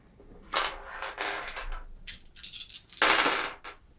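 Dice clatter and tumble across a hard surface in several bright, rattling bursts, with a loud final spill near the end, rolled for a wits and awareness check. No voices.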